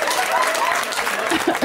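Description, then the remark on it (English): A small group claps lightly and steadily, a soft patter of hands that stays fairly quiet, with a faint murmur of voices mixed underneath. “And thank you for your tiny claps.”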